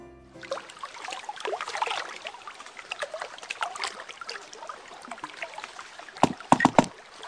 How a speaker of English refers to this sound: did you turn the ice storage into... a warm, bubbling bathtub of mulled cider?